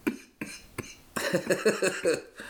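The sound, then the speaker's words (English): Three short, sharp, fairly loud coughs in quick succession, followed by a busier stretch of human voice. “Hash cough.”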